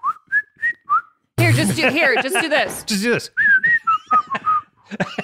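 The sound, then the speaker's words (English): A person whistles a few short, breathy notes, breaks into a burst of noisy vocalizing or laughter, then tries again with a string of wavering, uneven whistled tones. “I can't whistle anymore.”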